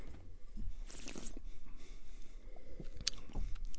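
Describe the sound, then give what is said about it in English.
A wet slurp as someone sips Merlot wine, followed by a few soft swishing and smacking mouth sounds as it is rolled around the mouth, with no talking. “I'm going to take a sip.”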